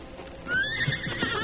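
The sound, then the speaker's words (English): One of a posse's horses in The Lone Ranger whinnies, a bright rising neigh lasting about a second, with a few soft hoof clops underneath and toward the end. “It was almost an hour before they gave up the search and returned to their horses.”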